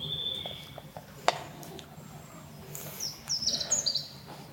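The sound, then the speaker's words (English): A European robin sings in a quiet outdoor setting, thin high warbling phrases and trills rising and falling over a low background hum, with a sharp click partway through. “A little robin having a little sing song.”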